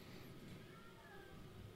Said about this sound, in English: Is that a cat again? Yes. Okay. It's really echoey over have here. Have you never heard a cat before? No, I don't think so. Not one like that.